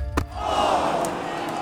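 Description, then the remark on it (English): A single sharp, ringing smack of a brown leather football, shot at goal by a player, hitting the crossbar and rebounding into the goalkeeper's hands, followed at once by a large crowd's rising roar that swells and holds loud to the end. “Eyes glued to the brown leather ball, it arcs too high, and as the crowd lifts from their seats, it smacks into the crossbar, rebounding into the goalkeeper's hands.”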